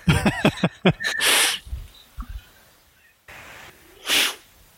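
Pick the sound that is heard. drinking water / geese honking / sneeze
sneeze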